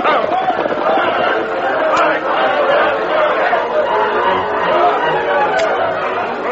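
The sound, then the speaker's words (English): A dense crowd of townspeople shouting and clamoring at once as smoke pours from a burning building, people running with pails of water and throwing it through the windows; many overlapping voices form a loud, continuous roar with no words standing out. “They were just entering the town when they saw smoke pouring out of the building and a crowd of people running with pails of water.”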